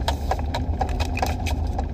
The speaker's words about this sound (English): key things knock around. It's bothering me. I just completely lost my train of thought because my key is knocking around the little key fob for this car.